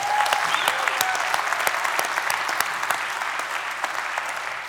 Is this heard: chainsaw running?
no